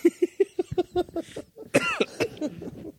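A coughing fit: a rapid string of short, hacking coughs, followed by a harsher, louder cough and several raspy, sputtering coughs that trail off.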